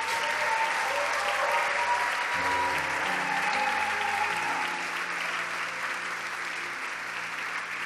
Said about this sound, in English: Clap for them.